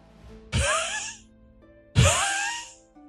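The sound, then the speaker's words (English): A voice imitates laboured panting and wheezing: two loud, raspy, breathy gasps about a second and a half apart, each trailing off into a strained, moaning exhale. “You see him panting and wheezing.”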